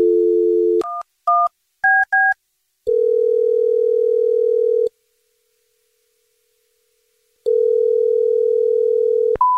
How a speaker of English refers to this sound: Here we go. I'm going to dial her phone number.